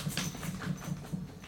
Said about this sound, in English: My doggy having a little shake. She's agreeing, like, mm-hmm, preach it.